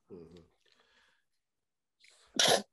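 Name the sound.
sneeze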